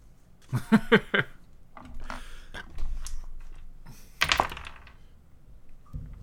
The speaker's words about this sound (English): Weird. I've never had that happen. It landed in my dice tray, like... in between two numbers.